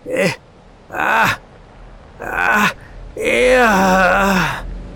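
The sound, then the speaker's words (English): An old man's hideous shriek: three short, strained vocal bursts, then a long, loud wavering cry that sags in pitch before cutting off. No other talking. “The hideous suddenness and inhuman frightfulness of the old man's shriek almost made me faint.”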